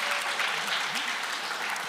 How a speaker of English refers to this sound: So applause all around for Coy.